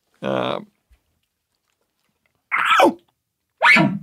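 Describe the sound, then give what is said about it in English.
A person imitates an elk bark with three short, loud vocal bursts: one sharp call, a pause of nearly two seconds, then two more abrupt, downward-sliding barks about a second apart. “Because it's one of the required sounds during the elk calling contest.”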